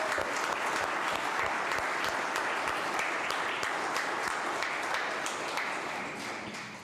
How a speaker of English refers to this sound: So can you all give each other a round of applause for choosing to show up today?